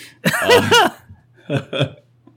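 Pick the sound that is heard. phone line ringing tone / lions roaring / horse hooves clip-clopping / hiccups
hiccups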